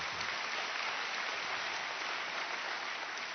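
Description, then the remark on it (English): A crowd applauds steadily, a dense wash of many hands clapping at once with no break or swell, sustained throughout at moderate loudness. “Yes, we can clap for that.”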